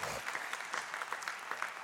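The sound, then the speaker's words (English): A group of people clapping their hands in praise to God after a prayer, a steady burst of applause with many overlapping claps forming a dense, lively wash of sound at moderate volume. “Can y'all give God a hand clap of praise there?”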